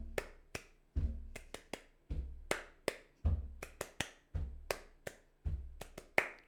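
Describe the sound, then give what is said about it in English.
A steady body percussion ostinato repeats about six times: a low, thudding foot stamp followed by two sharp hand claps in a swaying triple-meter rhythm, with no voices. “Let's think about a body percussion ostinato that can kind of enforce this or reinforce this swaying triple meter thing that we have going on.”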